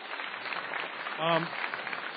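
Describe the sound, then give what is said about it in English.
A debate audience claps steadily throughout, a dense, even patter of many hands at moderate volume, with a brief voiced shout or cheer rising out of it midway. “But you should give yourselves a round of applause for being here and for taking part in this tonight.”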